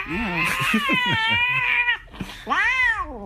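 A cat yowls angrily after its treat is taken away, one long, loud, wavering growl-yowl followed after a brief pause by a second shorter, rising-and-falling cry.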